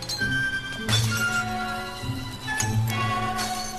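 Glass pop bottles crack and shatter in a few sharp bursts, each followed by a bright, ringing tinkle of pieces, loud over a steady humming tone.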